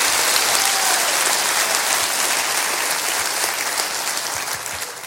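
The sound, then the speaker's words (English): An audience at a church sermon claps together for the resurrection in sustained applause, dense and fairly loud, the clatter of many hands gradually easing off toward the end. Nobody speaks. “Clap for the resurrection today.”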